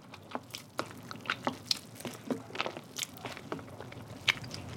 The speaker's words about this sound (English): Basically, I'm just trying to dissolve some of the starters most of the starters so that it's pretty evenly distributed when I put in the flour.